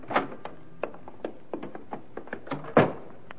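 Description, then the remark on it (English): A door being handled: a string of sharp clicks and knocks from the latch and frame, ending in a louder thud as it swings shut. No voices. “Right through this door here.”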